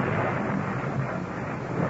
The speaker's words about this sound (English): the city of Rome is racked by a wild electrical storm